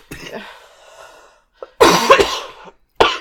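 A person coughs: a raspy, drawn-out cough first, then a pause and a couple of loud, harsh bursts, with no talking.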